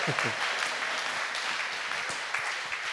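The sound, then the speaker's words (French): An audience claps for the Lord together in a dense, sustained burst of applause, loud and steady throughout, with a few faint voices mixed underneath. “Let's clap for the Lord.”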